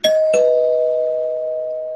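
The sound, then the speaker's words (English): A bright bell, used as a spoiler warning sound effect, is struck twice in quick succession, then rings on with a clear, sustained tone that slowly fades. It is fairly loud, with no voices. “I'll ring the spoiler bell at this point, because we just talked about one of the more gross things that happens in the issue.”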